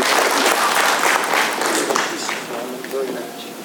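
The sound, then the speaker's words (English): An audience applauds to welcome a retired pastor from Mammoth Baptist Church in Meeker, a dense, steady wash of many hands clapping that holds loud and then eases slightly toward the end, with a few faint voices mixed in. “We can clap in church, just so you know.”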